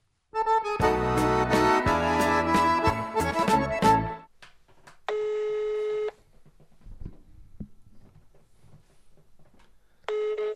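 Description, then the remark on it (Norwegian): A rapid flurry of phone keypad tones as a call is placed, giving way to the outgoing call's ringback: a steady electronic tone about a second long, a pause of silence, then the next ring beginning. No one speaks. “Ja, men skal vi ringe siste mann, eller?”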